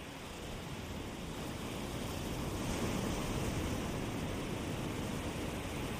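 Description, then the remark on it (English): Ocean waves wash in at night in a steady, hissing rush that swells slightly in the middle and then eases back into the sea, continuous, with no voices. “Washing back into the ocean.”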